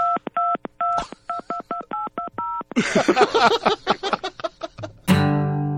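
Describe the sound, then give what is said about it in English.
A quick run of keypad tones from an old-fashioned beige retro telephone beeps out a rhythmic little melody, clear, followed by a burst of clattery handling noises and a final sharp knock. “I'm calling from, it looks like a telephone. Yeah, it's one of those old-fashioned retro phones.”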